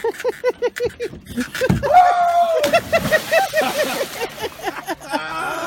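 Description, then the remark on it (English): At night, a fan celebrating his team's title win jumps into cold Lac Seul lake water, about 55 degrees, with a loud splash, followed by sloshing water while voices laugh and shout around it. “If the Blues ever won the title, he'd go jump in a lake.”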